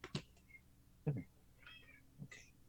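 A few faint, short, high-pitched cat meows, spaced apart and mixed with soft clicks and taps. Quiet, with no talking.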